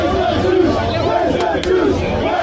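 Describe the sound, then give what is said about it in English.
A large protest crowd in front of the Sydney Opera House in Sydney, Australia chants in loud, rhythmic unison, voices rising and falling together in a dense, roaring wash with a couple of sharp bursts cutting through. “This is in front of the Sydney, Australia Opera House. Listen to this great crowd.”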